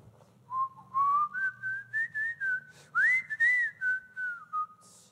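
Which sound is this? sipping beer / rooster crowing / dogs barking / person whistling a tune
person whistling a tune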